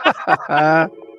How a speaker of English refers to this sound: Oh, the phone is ringing. Okay. Sorry.